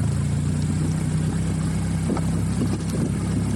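A steady, loud engine rumble drones throughout, low and continuous with a slight hum, as a car drives away at speed; faint clatter rises briefly near the end.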